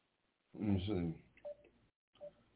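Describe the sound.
Two short electronic keypad tones beep about a second apart, following a brief burst of muffled, phone-filtered voice; the beeps are clear but not loud.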